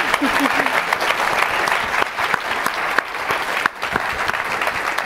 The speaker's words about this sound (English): Thank you all so much for being here. Please give them a round of applause.